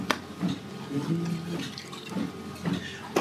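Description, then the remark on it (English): Water runs or pours steadily, a continuous splashing wash with a few brighter splashes and clinks along the way, and no one speaking. “But, more water.”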